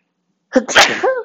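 A single loud sneeze bursts out after a moment of silence, with a sharp intake and an explosive, breathy release that trails off with a slight vocal tail.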